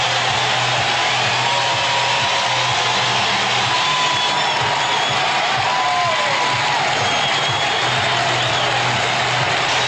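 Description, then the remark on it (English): A huge baseball stadium crowd roars and cheers without letup as Ricky Henderson steals second base and ties Lou Brock's stolen-base record of 938, a dense, steady wash of noise holding at the same loud level throughout, with no single voice standing out. “Ricky has removed second base, patted it lovingly, raises both arms to the crowd. Listen.”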